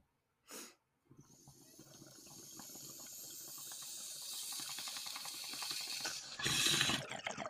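A short click, then continuous gurgling of bong water bubbling as someone takes a hit, steadily building over several seconds and ending with a louder airy rush, with no talking.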